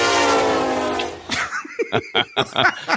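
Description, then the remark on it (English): A voice imitates a train horn's blaring, drawn-out tone for about a second, then breaks off into a string of short laughs. “Could you be invisible, fly, or make the train noise?”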